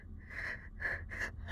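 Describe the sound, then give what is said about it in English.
Heavy, rasping breaths repeat in a steady rhythm, four or so loud inhales and exhales, heard from a mine shaft, with a low rumbling background and no talking. “I just keep hearing they're breathing.”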